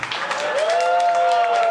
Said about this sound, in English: Keep clapping.